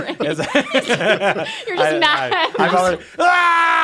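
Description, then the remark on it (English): A man vocally imitates how he screams into the toilet while vomiting: a run of strained, gagging groans and retching bursts that ends in a loud, sustained yell. “My wife will tell you that when I throw up, I scream. Really? It's like I'm screaming into the toilet.”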